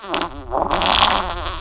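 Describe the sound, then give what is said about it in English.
A long, loud fart, buzzy and rippling, lasting well over a second with a wavering pitch, with no one talking over it. “I did not declare it, therefore I did not blare it.”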